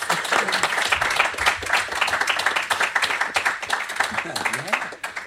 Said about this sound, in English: No, if you could give a massive round of applause for our panel.